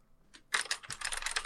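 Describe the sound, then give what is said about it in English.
Rapid typing on a computer keyboard: a single key tap, then a dense flurry of quick, clattering keystrokes that continues steadily to the end, with no voices. “Miss, what are you typing?”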